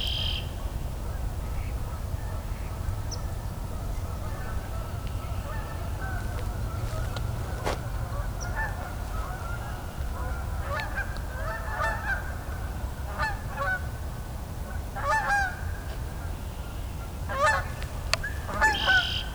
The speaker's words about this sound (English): The Canada geese are stirred up quite a bit.